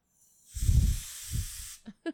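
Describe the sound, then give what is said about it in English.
A can of compressed air sprays in one continuous hiss for about a second and a half, with low windy buffeting as the blast hits the mic, then two quick soft knocks. “But you waste your compressed air, though, if you do that.”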